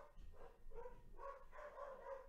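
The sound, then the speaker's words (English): A dog gives a few short, whiny barks and yips in quick succession, fairly faint and set against a low background rumble, with no one talking. “Oh, and then the dog arrives, which is always awesome.”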